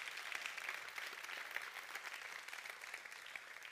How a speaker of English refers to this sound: Come on, let's give the Lord a clap offering and believe together.